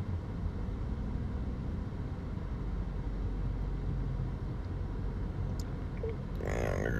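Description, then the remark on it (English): A heavy pickup truck engine rumbles loudly as it drives past, a steady deep drone of motor and road noise that barely shifts, with a brief higher squeal near the end. “For big ass pickup trucks.”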